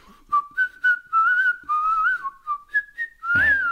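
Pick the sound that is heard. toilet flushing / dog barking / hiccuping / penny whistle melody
penny whistle melody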